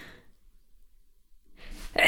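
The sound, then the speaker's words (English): A single sneeze: a soft breath, a short pause, a rising, breathy intake, then one sharp, loud, explosive burst at the very end. “I'm going to sneeze.”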